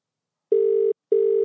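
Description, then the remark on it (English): An outgoing phone ringback tone: two steady electronic buzzing tones, each about 0.4 seconds with a short gap between, clear, with no voices. “First time I've made a phone call with Jason with his headphones on.”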